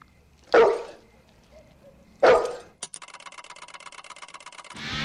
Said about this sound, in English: Oh yeah, and Beasley the dog from Turner and Hooch. Y'all remember that, right?